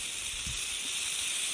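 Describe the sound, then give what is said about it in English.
A western diamondback rattlesnake gives a steady, dry, hissing buzz of its rattle, fairly loud, holding unbroken for the whole moment with no voices present. “Number 14, a western diamondback snake has zero legs.”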